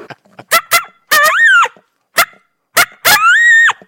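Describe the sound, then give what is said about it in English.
A person imitates a coyote's challenge call: pairs of sharp barks, each followed by a drawn-out wavering howl that rises and falls, repeated twice, loud. “And then no matter whether they answer that or not, the next howl I go to is a challenge howl.”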